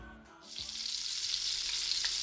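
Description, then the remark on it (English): Bacon sizzles steadily in a hot pan in a home kitchen, a dense crackling hiss that swells in after a quiet start and stays loud, with faint pops scattered through it. “That, my friend, is the unmistakable sound of sizzling bacon.”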